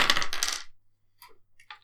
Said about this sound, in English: So roll 4 dice. For every point, every 6 you roll, your armor mitigates a point of the damage on you.